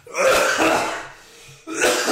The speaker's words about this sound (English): And now I'm going to cough.